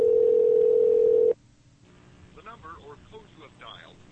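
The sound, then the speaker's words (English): A phone call is made to a man whose phone is switched off: a loud, steady telephone tone holds for just over a second, then cuts off abruptly, followed by a brief pause and a quieter, muffled voice speaking over the line. “I'm just gonna call him real quick.”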